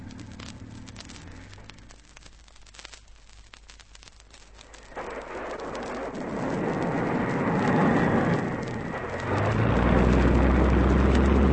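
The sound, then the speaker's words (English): A seaplane engine roars through a takeoff run on water. A broad, hissing rush swells after a few seconds and grows louder, and a deep, heavy rumble surges in near the end. “If he hasn't enough speed, the plane will stall.”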